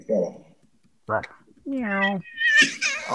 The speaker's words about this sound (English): Meow.